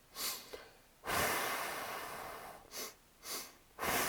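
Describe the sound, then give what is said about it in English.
Breathy sounds of someone doing a calming deep-breathing exercise: two short, quick sniffs in followed by one long, steady exhale, with the pattern starting again at the end. No one speaks. “You can take two sniffs in and one long out.”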